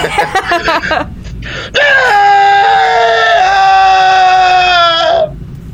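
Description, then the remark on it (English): After a moment of brief murmuring, people break into one long, loud, sustained cathartic scream together lasting several seconds, its pitch sliding downward in steps before cutting off abruptly. “So shall we all cathartic scream together?”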